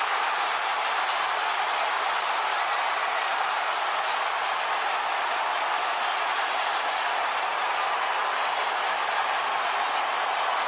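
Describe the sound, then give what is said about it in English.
A stadium crowd in Arlington cheers a home run crushed deep to left field, one loud, sustained roar that holds steady for about eleven seconds, a dense wash of voices with no announcer or talk over it. “See, that's the best call for me, because he just let the moment live. Let the crowd take it.”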